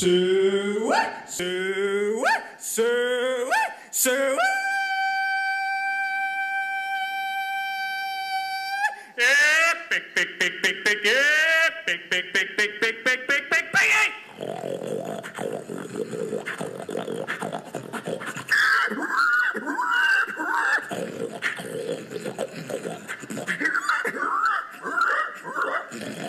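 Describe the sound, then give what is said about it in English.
A person belts out a loud pig call: rising and falling whoops, a long sustained held note, then rapid choppy vocal bursts trailing into rough, noisy hollering. “Now, if you listen to any other baseball podcast and you have heard a pig call on it, please let me know, because I think we've just broken ground.”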